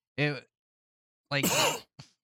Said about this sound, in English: A real life cough.